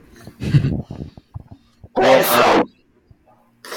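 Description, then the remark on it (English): A single loud, explosive sneeze bursts out, preceded by a few short breathy, voiced sounds and followed by quiet. “Freaking hate when people sneeze loud.”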